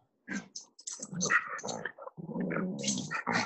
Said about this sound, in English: Whose dog is fucking freaking out? I love mine.